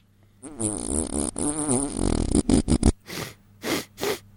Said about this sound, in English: Say, it does neutralize the … fart. I can breathe again.